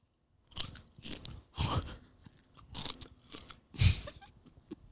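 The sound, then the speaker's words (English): Loud, crunchy chewing, with about seven or eight irregular bursts of crisp munching over a few seconds, with no talking. “I wonder if you can hear if I'm chewing.”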